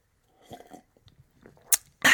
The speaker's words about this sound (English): I better take a sip of green tea.